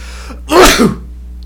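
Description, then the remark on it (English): A single loud sneeze bursts out in a sharp, breathy blast lasting under half a second, with a brief voiced catch, then fades to quiet low hum. “Sorry, I feel a sneeze coming on.”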